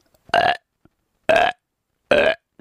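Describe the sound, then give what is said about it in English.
Three loud, short, throaty grunts, evenly spaced about a second apart, with a voice imitating a deer buck's grunt, made with the mouth alone and no call, as used while deer hunting to draw a buck. Each call is a brief, burp-like, low guttural note, with silence between them. “I was out deer hunting one day, and there was this huge buck up on this ridge above me. So I started grunting.”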